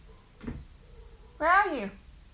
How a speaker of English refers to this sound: Hey, did you hear my cat? He's meowing to me. Hey, Max.